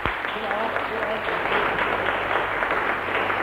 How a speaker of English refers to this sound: Come on, bring them up. Give them a clap. Bless the Lord.